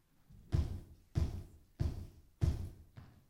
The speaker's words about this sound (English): He says, behold, I stand at the door and knock. knocking.